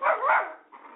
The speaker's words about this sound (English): Hi. So, do you see this dog, or hear him?